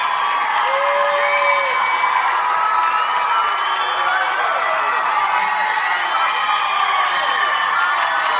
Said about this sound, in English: Clapping with my hands there.